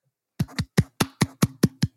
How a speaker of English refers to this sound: Hopefully you heard, which is my attempt at my Nancy Pelosi clap to Liam Neeson for trying to give us that PSA on racism. When I say Nancy Pelosi clap, do you know what that is?